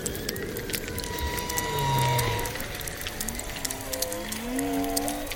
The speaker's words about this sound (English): Now they are eerily silent. So whale song is the most obvious example of this.